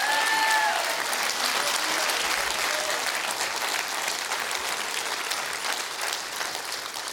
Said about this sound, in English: Come on, clap your hands.